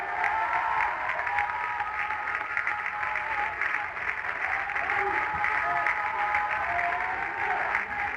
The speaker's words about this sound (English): Come on, clap your hands and thank God you're anointed. Come on, clap your hands.